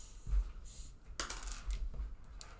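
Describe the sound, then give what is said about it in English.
Dice clatter and tumble across a tabletop during a game in a series of sharp, bright clicks and rattles, irregular, with no voices. “You need a fucking dice tower. I do. Or at least a dice tray.”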